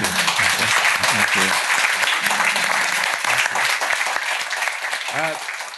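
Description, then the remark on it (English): A crowd claps at the end of a talk in sustained, dense applause for several seconds, loud and steady, with a few voices calling out and murmuring underneath before it begins to taper off. “Round of applause.”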